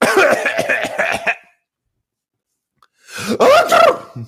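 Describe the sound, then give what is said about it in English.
A person voices a string of coughing sounds, then after a short pause a single loud sneeze. The sounds are vocal imitations, with no other talking. “Or however people cough and sneeze.”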